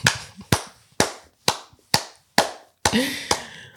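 Slow, evenly spaced claps, about eight sharp loud smacks roughly half a second apart, each with a ringing tail, thickening into a busier burst of clapping near the end; no one talks.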